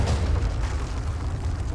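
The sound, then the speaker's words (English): A deep, rumbling explosion roars loudly and steadily, shaking the ground and a table and knocking pictures off the wall, its heavy low boom and broad crackling wash filling the whole moment without fading, with no voices present. “And the table begins to shake, and the ground begins to shake, and pictures begin falling off the wall, and you hear this explosion.”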